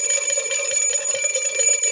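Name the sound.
bell rung twice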